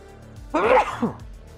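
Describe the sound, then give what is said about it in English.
A single loud sneeze bursts out, a sharp voiced blast with a short trailing catch, set against a quiet background with no talking. “Sometimes you have such ample warning for a sneeze.”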